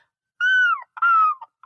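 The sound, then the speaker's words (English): A person imitates a seagull with two loud, drawn-out calls, each sliding downward in pitch; the second is rougher and more cracked than the first. There is no other talking. “The only thing I do is the seagull.”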